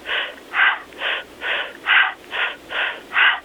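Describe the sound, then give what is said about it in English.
Rapid, rhythmic breathing through a straw, done as a breathing technique: about eight quick, hissing, airy breaths in even succession, each a short whooshing burst with no talking. “I may have them do, let's say, I say breathe through a straw, like you're breathing through a straw, and it sounds like...”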